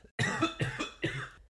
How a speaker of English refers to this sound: Sorry, I had a coughing attack. It's very dramatic. Oh man, this sickness is really